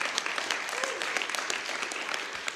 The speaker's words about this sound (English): You guys can clap for a song like that.